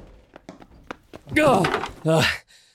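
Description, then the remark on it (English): A scattered series of dull thuds and knocks as a person crashes into their desk and knocks things over, followed by a loud, strained vocal outburst like a groan. “You just crashed into your desk and knocked your shit over.”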